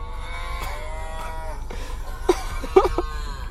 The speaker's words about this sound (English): Might have to turn up the volume on the cow, though.